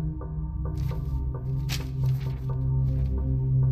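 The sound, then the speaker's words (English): Morse code signal tapping out a steady series of short pulses over a heavy, droning low hum, with occasional hissy bursts breaking through; no one speaks. “It's Morse code.”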